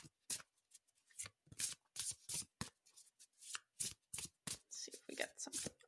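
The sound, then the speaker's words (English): A deck of tarot cards is given a last shuffle during a card reading, a series of quick, crisp riffling bursts and soft card slaps in an irregular rhythm, with no voices. “All right, last shuffle.”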